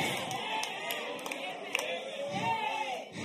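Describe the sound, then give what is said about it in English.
A crowd stomps their feet on a wooden floor, a dense, continuous rumble of thuds with a few sharper hits, while voices shout and chatter throughout. “Stomp on that devil. You're not going to put him out by stomping, but you're going to put him on the run when you start stomping.”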